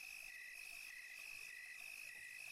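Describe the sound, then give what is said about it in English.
A steady, high-pitched chorus of crickets chirping continuously in a graveyard at night, with a pulsing trill layered over a constant shrill drone, fairly soft and even throughout, with no voices. “Nothing but the sound of crickets in nature about.”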